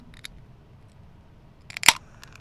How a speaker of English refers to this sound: That is such an incredibly authentic sound. Yeah, I know. It sounded just like someone opening a can of beer.